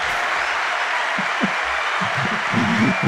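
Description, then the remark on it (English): A crowd applauds steadily as Jack Hibbs from Calvary Chapel, Chino Hills, is introduced, a dense, even wash of many hands clapping throughout, with faint voices or cheers rising underneath toward the end. “I wish I could carry that applause around in my pocket wherever I go.”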